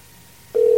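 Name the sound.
outgoing phone call ringing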